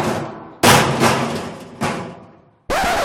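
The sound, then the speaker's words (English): A sound effect of a steel weight dropping onto a floor: about five loud, heavy metallic crashes spaced irregularly, each trailing off in a ringing decay. No voices. “There's going to be a sound effect of a steel weight dropping on the floor, and that is the sound of this”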